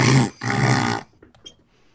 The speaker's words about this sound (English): He thinks shaking the bells is like distracting us. Like, if I shake the bells hard enough, they won't hear me fart.